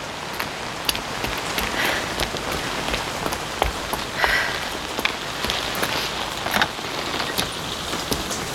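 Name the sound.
heavy rain falling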